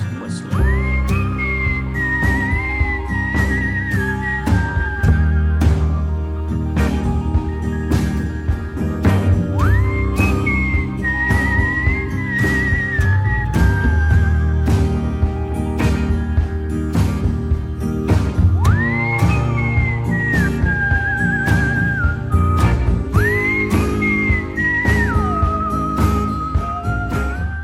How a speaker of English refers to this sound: All right, so let's hear some whistling.